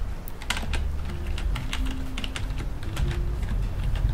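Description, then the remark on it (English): Rapid, uneven clicking of fingers typing on a computer keyboard during a winter lodge check-in, booking a spa appointment, a steady run of light taps with brief pauses, over a low, constant rumbling background. “ASMR Winter Lodge Check In (hand movements, typing, rain)”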